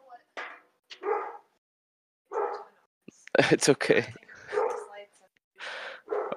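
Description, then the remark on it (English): Dogs bark at home in a handful of sharp, short bursts, with a cluster of rapid barks midway, while a person speaks briefly between them. “And my dogs are home, if you can hear that too.”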